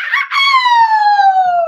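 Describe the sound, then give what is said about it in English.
A dog lets out one long, loud howl, the drawn-out tone sliding slowly downward in pitch over more than a second, with no one talking over it. “If Rollo start barking, I'm gonna laugh my ass off right now.”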